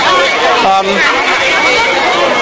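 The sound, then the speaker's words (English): A dense, steady babble of many voices chattering at once fills the whole stretch, loud and continuous with no single speaker standing out, the busy murmur of a crowded show on a day when it has been raining a bit. “You can probably hear the people galore around me.”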